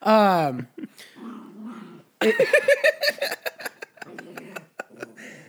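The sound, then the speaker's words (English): A dog growls and yowls in agitated, rising-and-falling bursts, with a long harmonic whine at the start followed by choppy grumbling vocalizations and brief pauses. “Stop getting him worked up. Yeah, he's all so riled angry up about now.”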